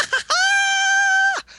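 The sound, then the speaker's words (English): A voice imitates a weird lispy scream: one long, steady, high-pitched wail held for about a second, loud, with a short breathy lead-in and a brief trailing noise. “But it was just screaming, like this weird lispy scream the whole time.”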